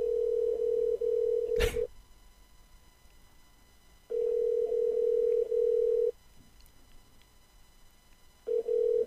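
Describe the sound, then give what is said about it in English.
An outgoing phone call's ringing tone, with the phone's volume turned up: a steady, low electronic tone sounding in roughly two-second bursts separated by longer silent gaps, with a brief click after the first ring. No one picks up or speaks. “It's calling.”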